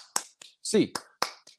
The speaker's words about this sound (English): Get your hands up, Bruins fans. Eight clap time, baby. And one, two, three, four, five, six, seven, eight.